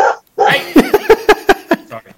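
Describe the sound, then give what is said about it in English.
A dog barks in a quick burst of about six sharp, high yaps in rapid succession, fairly loud, preceded by a brief whiny vocal sound. “I don't think I've ever got through a podcast without them barking once.”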